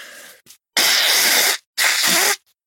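human body sound, person blowing their nose

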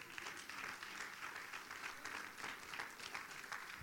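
crowd, audience hand clapping applause

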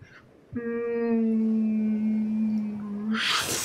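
sound effect, whale song sound effect

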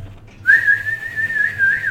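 human body sound, person whistling

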